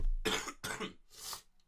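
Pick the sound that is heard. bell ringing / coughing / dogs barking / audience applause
coughing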